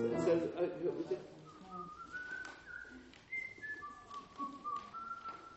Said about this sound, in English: Or, yeah, just it's hard to pitch when you're whistling, I suppose.